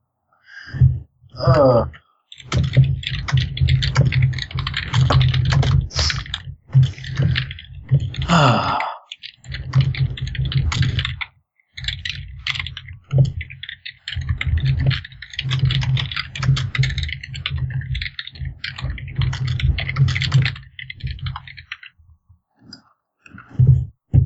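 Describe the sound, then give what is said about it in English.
Rapid, steady clacking of keys on a computer keyboard as someone types notes, fairly loud, in dense bursts with a couple of brief pauses before the typing resumes. “Oh, this is keyboard. This awful keyboard. I'm trying to make notes while they're still fresh, but the up button is where the shift key should be.”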